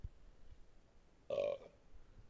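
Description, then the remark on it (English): A single short burp erupts out of quiet background, a brief guttural croak lasting under half a second before silence returns. “Sorry, I had to burp.”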